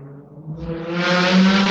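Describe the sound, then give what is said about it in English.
A car engine revs hard outside, its growl rising in pitch and swelling louder as the vehicle speeds closer, with no voices over it. “Yo, did y'all hear that car? Yeah, they're doing like 500. People ripping that thing.”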